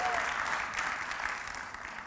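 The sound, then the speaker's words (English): A church audience applauds steadily, a dense wash of many hands clapping at once that holds an even level for about two seconds before easing slightly at the end. “I love the church, and you can clap if you want to.”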